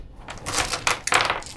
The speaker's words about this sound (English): What I have here is a D6. I'm going to roll it.